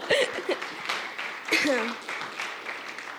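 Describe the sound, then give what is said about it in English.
A church audience claps steadily for a few seconds, with scattered cheers and whoops rising above the applause before it starts to taper off. “Give your guys a round of applause.”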